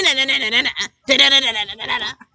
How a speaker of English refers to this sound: That's the Mexican hat dance.